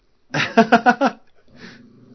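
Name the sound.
dog growling and whimpering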